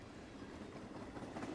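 A train rolls steadily along railway tracks, a continuous low rumble with a faint metallic rattle, with no voices.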